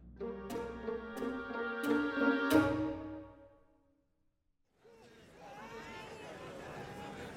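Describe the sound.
A few ringing musical chords fade into a brief silence, then a dense crowd hubbub rises: many overlapping voices chattering at once, steady and moderately loud. It is the market-day crowd on Acheron, near the spaceport.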